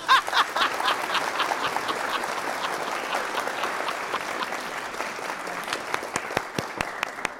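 A crowd claps steadily for several seconds, a dense patter of hands that thins toward the end into a few scattered, separate claps. No one speaks.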